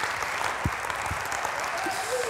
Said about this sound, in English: I need some believers in this house. Would you give him one more hand clap of worship and one more hand clap of praise?